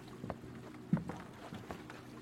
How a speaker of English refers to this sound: But it wasn't until he heard the creak of the worn wooden boards that he was now certain he was no longer alone.